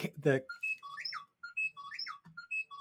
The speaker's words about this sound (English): I hear R2-D2. Excuse me, that is my ringer of my phone.